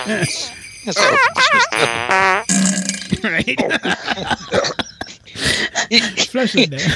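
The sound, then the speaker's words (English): A voice imitates a run of farting noises: loud, buzzy bursts with wobbling, warbling pitch, one long quavering stretch, then quicker sputtering blasts. “On the last day of the meeting, some very nasty men were overheard mocking my husband for blowing out a stinker during a meeting.”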